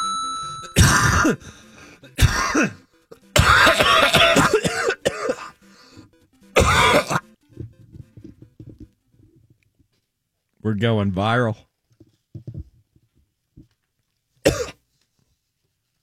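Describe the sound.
Harsh coughs blast right into the microphone in a rapid cluster, loud and distorted, followed by a short spoken remark and one final sharp cough after a pause.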